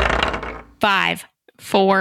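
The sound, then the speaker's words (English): Dice rolled for initiative clatter and rattle across a table in a brief burst under a second long, then two short vocal sounds follow with a pause between them. “Roll initiative.”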